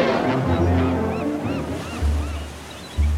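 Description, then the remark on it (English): A deep, rumbling ship's horn of a giant luxurious German ocean liner, the SS Bremen, sounds in repeated low blasts as the liner sets off at sea, over a steady wash of sea and engine noise, with gulls crying faintly above. “With a roar of freedom from her mighty voice, the giant liner stirs into life.”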